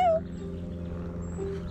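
cat meowing

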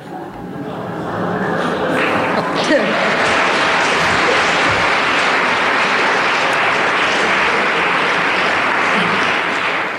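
audience applause

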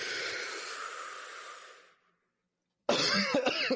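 loud cough

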